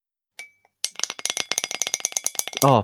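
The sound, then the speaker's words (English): A spoon clinks against a dense mug: a lone tap, then a quick, uneven run of bright ringing clinks for about two seconds, ending as a voice briefly cuts in. “That sounds like a spoon on a very dense mug.”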